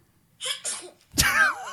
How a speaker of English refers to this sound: It's no baby sneezing though, man. Let's hear the baby sneeze.